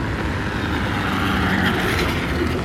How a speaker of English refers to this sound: Somebody going by an electric scooter.